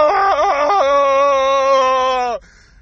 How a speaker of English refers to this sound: That's my scream of, like, frustration because I don't understand how the fuck we truly believe this guy is legit.